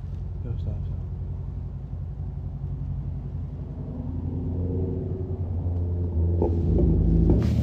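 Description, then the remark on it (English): Loud car engines rumble with a deep, steady drone, then rev up into a louder roar toward the end, with faint voices in the background. “Oh, you know, it's just their dumb cars, bro.”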